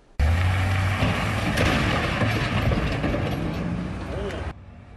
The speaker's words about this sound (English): So you hear the engine revving, then the sound of crashing into those protective bollards. Witnesses say the driver backed up and did it a second time before the Secret Service rushed in.